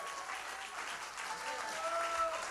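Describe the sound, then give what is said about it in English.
A crowd claps their hands in a steady wash of applause, dense and continuous, with a few faint sustained tones and murmuring voices underneath. “Oh, clap your hands, all you people, and shout unto God with a voice of triumph.”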